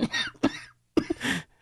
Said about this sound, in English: That was my COVID-19 cough. Sorry, should not joke about that. I apologize.